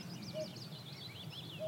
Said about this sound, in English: And you hear willow warblers calling.